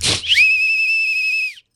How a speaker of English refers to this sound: Here, I'll blow my whistle.